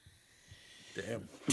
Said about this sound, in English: Damn. Bless you. Well, it was a coffee sneeze, but thanks.